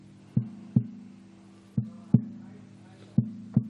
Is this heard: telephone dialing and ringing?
no